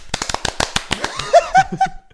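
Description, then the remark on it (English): A quick run of about ten sharp hand claps to mark the start of a recording, in a slightly uneven rhythm, followed by a few short bursts of laughter as the clapping stops. “Clap again.”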